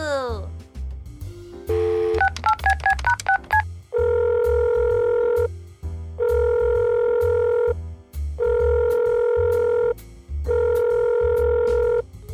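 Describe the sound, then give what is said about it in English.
A quick burst of dialing tones, then four long, steady electronic ringback tones with even gaps between them, the call left unanswered over a low background hum. “Well, he didn't answer. Let's try again.”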